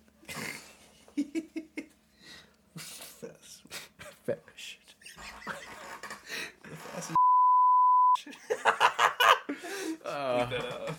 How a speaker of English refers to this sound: No, we're gonna keep that. I'm bleeping it out. So I'll make sure not to bleep it out.